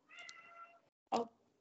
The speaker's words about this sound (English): Oh. Is that a... Hello? Normally it's my cat that's interrupting. I'm cat sitting right now, so Lynxie is just saying hello.